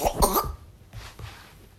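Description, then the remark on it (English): A baby girl coughs twice in quick succession, short harsh bursts, followed by a faint, quiet stretch with soft breathing or rustling. “That cough is not getting no easier, though.”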